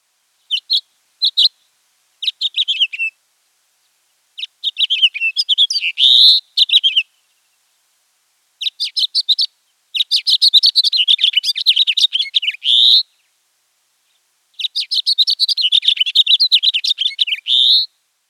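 A house finch sings a series of long, jumbled warbling phrases made of quick high notes, separated by short pauses, clear with no other sounds.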